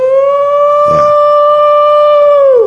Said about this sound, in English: Now, this is a guy calling across the water. He's calling for a canoe in Ecuador. Okay, thank you very much. So he's calling for a canoe. He's a guy calling for a canoe.